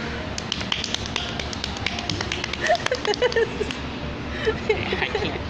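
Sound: hands rubbing together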